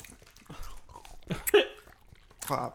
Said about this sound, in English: I just can't handle these. It's just so sour. Like, they're very sour. My teeth just feel like they're gritting against each other after I chew. I love it.